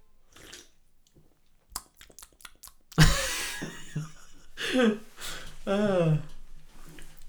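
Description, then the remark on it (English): A voice imitates a grandfather smacking his lips after he takes a sip of anything: a quick series of sharp, wet smacking clicks, then louder exaggerated breathy and voiced sounds with wavering, sliding pitch. “he smacks his lips together like he's Mick Jagger”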